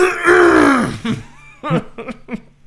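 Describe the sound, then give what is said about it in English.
A voice imitates clearing its throat: one loud, drawn-out guttural rasp that falls in pitch, then a few short, rough bursts. “And so when he walked by again, I cleared my throat.”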